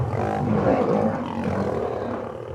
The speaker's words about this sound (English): The sun is setting, the sky is darkening, and three male lions are having a little scuffle nearby.